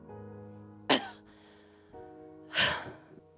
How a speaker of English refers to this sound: we see Rey lying on the forest floor, her friends surrounding her as she lets out a cough.